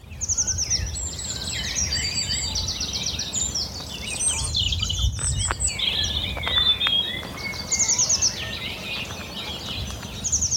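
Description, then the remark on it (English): A dense chorus of birdsong, including blue tits, fills a reed marsh in the Avalon marshes of the Somerset Levels: many overlapping high trills, whistles and chirps run continuously, with a soft low rumble of background noise underneath and no talking. “So this cacophony of song is my welcome at deep in the Somerset Levels, the Avalon marshes.”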